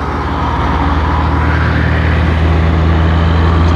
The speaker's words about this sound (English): I have a heavy truck.